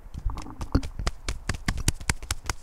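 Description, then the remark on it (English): Gloved hands clap in a quick, uneven burst of applause, each slap dull and muffled rather than crisp, continuing steadily for a few seconds with no voices. “I'm just slapping.”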